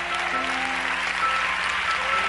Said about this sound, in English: I say you ought to clap. If you can clap with everybody, clap.